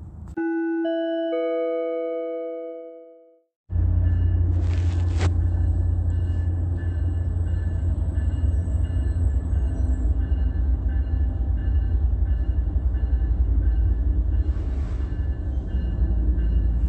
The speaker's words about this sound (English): This is the combination of the use of Amtrak and plane activity also sounding and fading out as I press record. And this is under what is a cloudy day, all right?